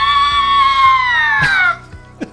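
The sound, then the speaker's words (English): A bobcat screams once, a loud, harsh, drawn-out wail that slides downward in pitch before cutting off abruptly, followed by a few faint soft knocks. “Ooh, what a menacing sound that Bobcat has.”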